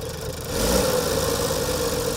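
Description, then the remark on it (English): An Allis-Chalmers WD-45 diesel tractor, fitted with a D17 motor, idles steadily, a low continuous rumble with a faint mechanical hum, growing slightly louder after the first half second and holding even. “We have here a WD-45 diesel.”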